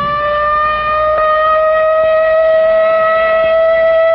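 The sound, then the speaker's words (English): A loud, sustained civil defense air raid siren, sounded as a practice training exercise, wails at a steady pitch, its strong harmonic tone holding unbroken throughout with no voices present. “But tomorrow, this siren may mean the real thing.”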